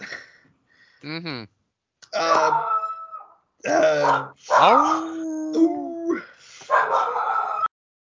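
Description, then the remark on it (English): Several dogs bark and howl in a loud, overlapping burst of yips, whines and drawn-out wavering howls, coming in uneven bursts for several seconds. “Yo, dogs. It's okay.”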